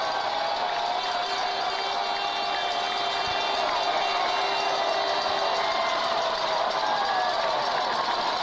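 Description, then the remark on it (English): A crowd at Tucker Stadium cheering on a December night as a football championship game ends in victory formation at 28-7, a loud, steady roar that holds unbroken for the whole stretch, a dense wash of many voices with no single speaker standing out. “Listen to the crowd.”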